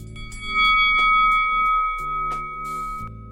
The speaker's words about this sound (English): Until the bell was over.